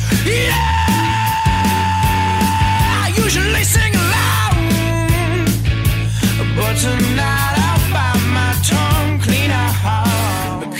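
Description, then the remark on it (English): A loud, distorted punk rock track with driving bass and drums, and a singer's raw, strained scream of "yeah" cutting through the dense, steady wall of guitars. “And that yeah is that scream.”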